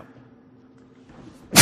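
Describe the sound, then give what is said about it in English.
A soft low hum runs quietly, then a single sudden sneeze bursts out at the very end, loud, breathy and sharp. “Thank you. Bless you.”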